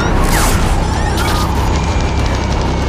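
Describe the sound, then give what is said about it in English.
A loud, chaotic crash of a spaceship going down in a film scene, with a dense, continuous roar of rumbling and rattling noise, punctuated by booming impacts and whooshing sweeps as the engines cut out, sustained throughout without pause. “So if you can't decipher what just happened, like their ship is crashing, she asks, are we going to die? He says, no. Then the engines cut out, and then he says, maybe.”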